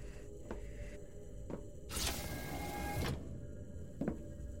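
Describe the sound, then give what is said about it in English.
A cockpit door slides shut with a smooth mechanical whir lasting about a second, bracketed by a few soft clicks and a final thump, over a steady low cabin hum. “Cockpit doors closed.”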